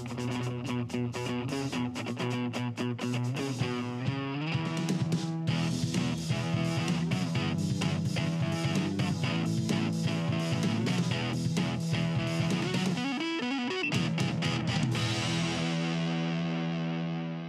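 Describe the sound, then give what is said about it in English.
Loud theme music built on distorted, effects-heavy guitar with steady, dense harmonies and driving rhythmic hits, holding full volume throughout and pausing briefly before a final sustained section. No voices. “Theme music.”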